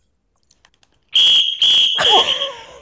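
A few soft clicks, then three loud, shrill blasts of a whistle used as a noisemaker, in quick succession, the last one trailing off with a warbling flutter. Piercing.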